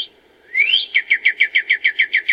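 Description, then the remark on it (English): A nightingale sings: a rising whistled note followed by a fast, even series of about a dozen loud, repeated chirping notes, with no one talking. “Nightingales, of course. If, if either of you had not got that after we just played them,”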